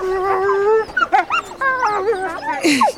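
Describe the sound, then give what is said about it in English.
Many wolves whimper and yip, with rising and falling whines overlapping in a busy, continuous chorus and a short sharp bark-like cry near the end. “Lot of wolves.”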